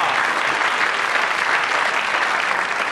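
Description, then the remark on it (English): A steady burst of audience applause, dense and even, with many hands clapping at once at a fairly loud, constant level throughout. “Applause for Timbre Taylor, because...”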